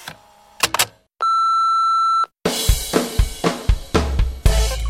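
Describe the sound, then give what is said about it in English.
A single steady electronic beep holds one fixed mid-high pitch for about a second, with a few brief clicks before it and a burst of rhythmic mechanical clattering and rumbling after. “After the tone, enjoy the show.”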